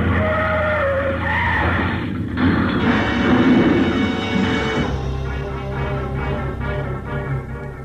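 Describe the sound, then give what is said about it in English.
A loud crash of a car driven into the path of a taxiing plane: roaring engines and a grinding skid build into a heavy crunching impact around the middle as the plane stumbles over the car and rolls up on its nose, followed by sustained rumbling and rattling metal as the wreckage settles. “The plane sort of stumbled over the car, rolled up on its nose, and stayed there.”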